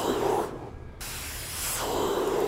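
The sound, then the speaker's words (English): A voice imitates spraying water with a harsh, breathy hiss, briefly breaking off partway through before the steady, fairly loud spray sound resumes and continues to the end. “It's like that ice pick water spraying at you.”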